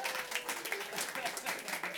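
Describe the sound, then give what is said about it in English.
A crowd at the Alberta Street Pub applauds itself with steady, dense clapping that holds at an even level for the whole stretch, with some voices and chatter mixed into the noise. “Give yourself a round of applause, Alberta Street Pub.”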